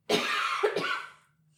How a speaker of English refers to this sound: I heard that cough. All heard that cough.